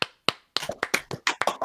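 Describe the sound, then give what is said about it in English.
Hands clap about ten times in a loose, uneven burst to close out a show: two spaced claps, then a quicker irregular flurry of sharp, crisp slaps with no voices. “Let's clap it out.”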